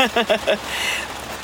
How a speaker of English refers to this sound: It's pouring. Oh my God, it is pouring.